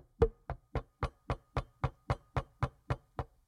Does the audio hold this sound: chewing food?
no